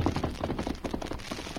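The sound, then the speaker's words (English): Pounding hoofbeats of a horse ridden in a hurry along an old trail, approaching from the direction of Benton: a rapid, steady run of dull thuds at a galloping rhythm, fairly loud, with no voices over them. “they heard pounding hoofbeats approaching from the direction of Benton on the trail above them”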